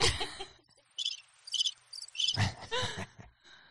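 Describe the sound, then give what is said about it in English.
Crickets chirp in a series of short, high-pitched trilling bursts, quiet and evenly spaced at first, then swelling into a louder, denser chorus before fading. No one speaks. “I put her on the spot. Crickets.”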